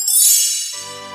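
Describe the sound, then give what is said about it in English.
A single bright, tinkling chime from a read-along record rings out clearly on its own, signalling when to turn the page. It shimmers high, then settles into a lower, sustained tone as it fades. “You will know when it's time to turn the page when you hear this sound.”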